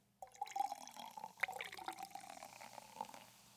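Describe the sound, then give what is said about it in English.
Liquid streams into a cup for a few seconds, a steady gurgling pour with small splashes and drips, no voices. “That was my last one to pour in, so now we're back up.”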